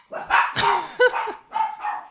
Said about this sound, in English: Oh, I think someone's here to visit our house. Sorry, I set the dogs off there. They ran to the door because they thought that was someone there, but it was, and it's the new person who's going to see our house.